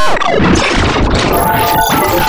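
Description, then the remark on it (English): A short radio bumper sound effect: a loud, dense, chaotic burst of layered crashing noise and clatter lasting about two seconds, with no talking over it. “I believe this is there's a sounder for it. Thing for it. It's called bumper.”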